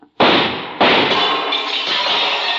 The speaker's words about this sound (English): What are you waiting for, Detective? He's shooting.